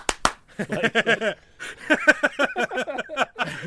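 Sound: hand claps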